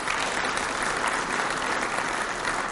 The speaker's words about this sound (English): Go ahead, you can clap with that.